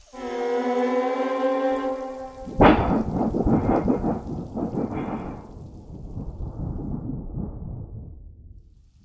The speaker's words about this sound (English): Ah, isn't that tropical rain rejuvenating?